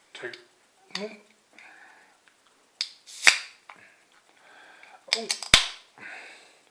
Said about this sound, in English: So let's get this out into my Salopian brewery glass and see what I think.